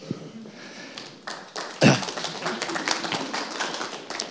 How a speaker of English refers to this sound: Your daughter was clapping for you guys. Wasn't that nice?